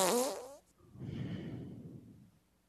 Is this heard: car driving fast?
no